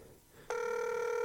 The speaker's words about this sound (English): It's ringing.